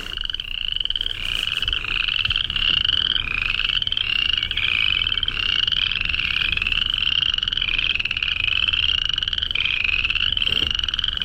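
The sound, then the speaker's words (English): A dense chorus of many frogs croaking at once in a little reedy area of a lake at night, heard while paddling; a loud, continuous overlapping trill that pulses steadily throughout, with no voices. “I went for a paddle last night and I pulled into this little reeded area and suddenly it got so loud in there.”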